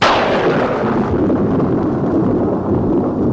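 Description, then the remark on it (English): A lightning strike hits with a sharp, loud crack that rolls straight into a heavy, sustained thunder rumble, the bright crackle fading over a few seconds while the low roar continues. “Throw the switches, wait for the lightning.”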